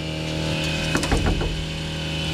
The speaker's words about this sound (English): He has a chainsaw now? Oh, my God. I'm sorry, guys. It looks like a horror movie outside.